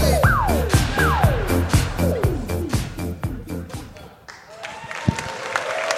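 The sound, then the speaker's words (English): Applause and cheering from an audience: a dense, steady wash of clapping mixed with loud rhythmic music that has repeated sliding pitch drops on a regular beat. “Probably the biggest applause break we've gotten so far.”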